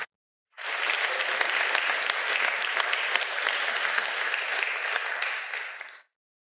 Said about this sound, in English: Give those folks a round of applause, please.